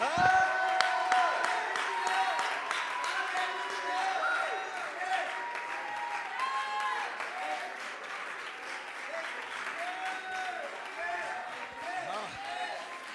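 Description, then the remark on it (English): A large audience stands, claps steadily and shouts unto God while many voices cry out in praise, a loud, continuous wall of applause and whooping for the whole stretch. “We can clap our hands, all ye people, and shout unto God.”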